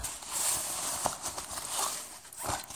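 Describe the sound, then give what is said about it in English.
Continuous soft rustling and shuffling of fabric and objects, broken by a few sharp clicks and knocks at irregular moments, as hands rummage inside a daily carry bag holding a pen and a Nexus 7 tablet with a Bluetooth keyboard case. No one speaks. “And I'm actively looking in it right now.”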